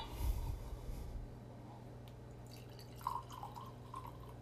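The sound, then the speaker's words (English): Two ounces of Henry McKenna bourbon trickle quietly into a glass, a soft pour with a few faint drips and light glassy tinks toward the end, and no one speaking. “First things first, I'm going to grab my Henry McKenna, and I'm going to pour 2 ounces.”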